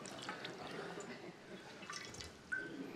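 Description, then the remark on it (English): Water trickles and drips softly, a quiet continuous pour with small splashes and one slightly louder drip near the end, water used in a Christian rite for a young boy, set against faint ambience. “I've got some water here.”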